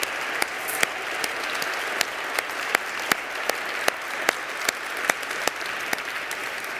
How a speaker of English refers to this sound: The whole program is incredible, and we are most grateful. So let's give them all a round of applause again.